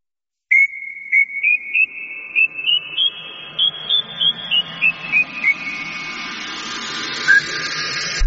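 A whistled tune of short, clear notes that climb steadily in pitch and then step back down, played over a steady mechanical hum that grows louder and noisier toward the end.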